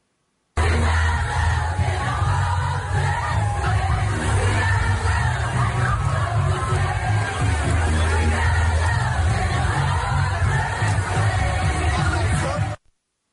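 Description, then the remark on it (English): A large crowd of thousands in Washington Square Park, Greenwich Village, lower Manhattan, arriving after a parade south along 7th Avenue, roars with dense, steady babble, shouting and occasional cheers, loud and continuous for about twelve seconds with no single voice standing out. “It was a large crowd as thousands arrived after a parade south along 7th Avenue, but witnesses say suddenly dozens of police vans circled around the park with their sirens and lights flashing.”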